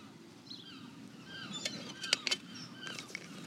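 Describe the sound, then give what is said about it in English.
Many birds call in overlapping chirps and whistles as a flock passes, with several sharp calls peaking near the middle, all over a steady low rumble of water or wind. “Oh wow, there's a huge flock of them going past.”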